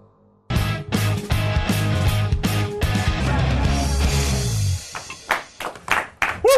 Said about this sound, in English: The weakest and tamest applause we've had from the bench.